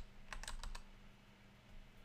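A quick burst of four or five computer keyboard keystrokes clicks close by in the first second, then only a low steady hum remains.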